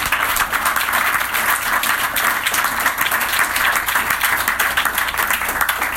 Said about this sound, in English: Clap it up.